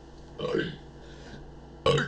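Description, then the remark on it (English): A throaty burp forced out by a voice imitating the Minecraft burp, one short rumbling belch with a dropping pitch, followed a moment later by another abrupt vocal burst cut off at the end. “My kids tell me I do the perfect Minecraft burp.”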